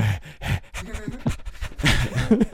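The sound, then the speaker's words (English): A person imitates a dog panting: quick, breathy huffs repeated in a steady rhythm, fairly loud, with a few voiced grunts mixed in. “And they paddle all the way out to your island. Huffing and puffing.”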